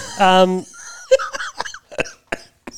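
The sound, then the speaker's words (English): A brief voiced, tonal cry is followed by a run of five or six short, harsh coughing bursts, spaced irregularly and fairly loud. “Not from the cough, mate.”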